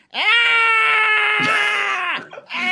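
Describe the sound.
A loud, sustained pained scream from one voice, held for about two seconds before breaking off, then a second cry begins. A performer voicing a character's agony as a javelin hits him in the clavicle area, strained.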